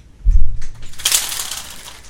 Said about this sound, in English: What is that? Hail? Is that what that is? It's gotta be. Open up the window. Hold on one second. I think we have a hailstorm. We're getting a hailstorm.